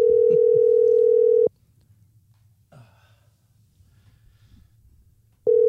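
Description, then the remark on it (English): An outgoing phone call's ringing tone: a steady electronic tone sounds for about a second and a half, pauses through several seconds of quiet with a faint breath, then starts again. “It's ringing. We've got ringage.”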